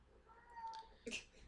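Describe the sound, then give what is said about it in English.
A male house cat lets out a long, drawn-out yowl, fairly faint, followed by a short, sharper cry at the end. “It's time for us to come to bed, and he's pissed that we're not in there going to Yeah. bed. So he sings the song”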